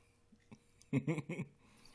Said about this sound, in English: Somebody's popping the cap over there, just pouring one out for us, man. Yeah. Just our official sponsors, V8 Energy.